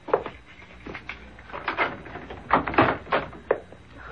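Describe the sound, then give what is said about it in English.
A series of clicks, rattles and clunks as a complicated security lock on a door is worked, followed by the door being pulled open, with no one talking. “Well, you certainly have a complicated lock on that door.”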